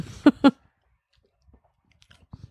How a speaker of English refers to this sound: I can hear your jaw clicking.